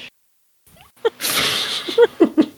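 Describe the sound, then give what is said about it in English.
A person whooshes with their mouth to imitate the wind, about a second of airy hiss, followed by a few short, quick voiced bursts. “You just whoosh with your mouth.”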